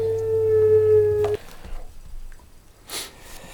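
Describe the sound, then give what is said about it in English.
A wolf's howl rings out as one steady, drawn-out tone that cuts off abruptly after about a second and a half, followed by faint rustling and a quick sniff-like hiss. “Yeah, maybe being killed by wolves.”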